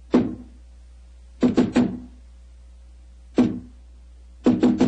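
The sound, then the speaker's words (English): Firm knocks on a very solid-looking door of a secret basement club, in a deliberate coded pattern: one knock, a quick triple, another single, then a final triple. Resonant and fairly loud, with no voices. “Who knocks?”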